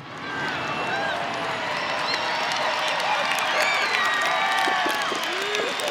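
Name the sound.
applause sound effect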